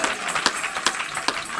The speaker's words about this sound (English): Oh, if you believe it, clap your hands unto the Lord.